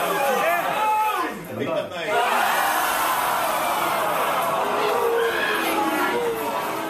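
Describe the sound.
A big football stadium crowd roars with a loud, sustained mass of jeering and booing voices, swelling and dipping briefly before holding steady, with scattered individual shouts rising out of the din, one voice shouting "crap!"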